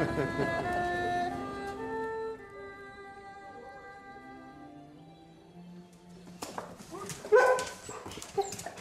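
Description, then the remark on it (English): Weimaraner dogs whine in long, wavering, high-pitched whimpers for several seconds, then break into a cluster of sharp barks and yips near the end. “They're called Weimaraners.”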